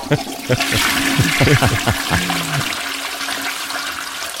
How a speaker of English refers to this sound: Add a flushing toilet in here.